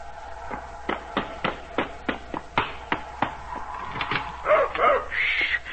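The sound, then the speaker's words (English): A dog named Pete barks at the door in short, sharp yaps at a steady rhythm, then breaks into higher-pitched whining and whimpering near the end, moderately loud. “You always meet me at the door, don't you? Good boy.”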